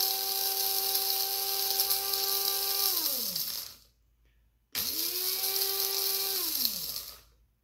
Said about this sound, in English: And you really just grind this up to the consistency that you like your ground up coffee whenever you pour it into your coffee filter.